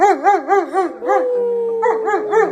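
A dog howls and yowls in loud, warbling cries that waver up and down in quick rhythmic pulses, continuous for a couple of seconds with no talking.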